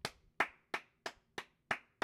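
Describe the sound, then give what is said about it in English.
A single pair of hands clapping at a steady, even pace, about seven sharp, bright claps in two seconds, each one crisp with a quick decay and no talking, given as a round of applause for Brooks Koepka. “That is a round of applause for Brooks Koepka for just being the only guy in a sport full of guys that are completely afraid of bad press and being misquoted and having anything even considered remotely controversial on record.”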